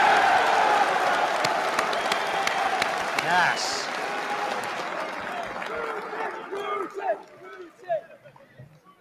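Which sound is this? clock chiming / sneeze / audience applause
audience applause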